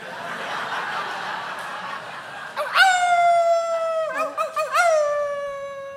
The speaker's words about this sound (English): That the wolves again, Pa? I reckon. Ones that took your leg? I reckon.